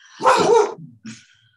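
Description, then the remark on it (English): A boxer dog lets out a loud bark followed by a shorter, softer second bark, with no one talking. “I'm glad all the distractions are coming on your side today. Not mine. What kind of dog do you have? I have a boxer.”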